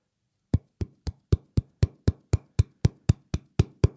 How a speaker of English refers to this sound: Is that what it is? Sounds like Tupperware boxes in a cupboard banging together.